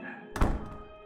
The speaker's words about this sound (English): After this, I just ran out and slammed the door behind me.